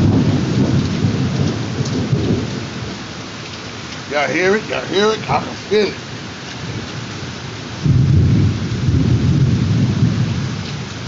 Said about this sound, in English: Ooh, I see the thunder and the lightning out this mug. We live though in it, you know what I mean?